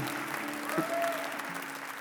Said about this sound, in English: Yeah, you can clap. It gets better.